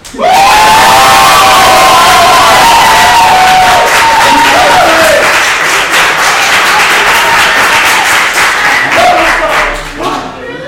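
An audience claps and cheers loudly for about ten seconds, with whoops and high shouts over dense, steady applause that thins slightly toward the end.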